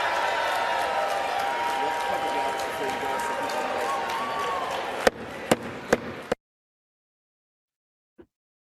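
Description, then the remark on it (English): A large crowd erupts in a loud, sustained roar of shouting, cheering and applause as Speaker of the House Mike Johnson announces the final vote tally and the resolution is not adopted, then four sharp knocks cut through before everything drops to silence. “And just listen to the reaction from the crowd.”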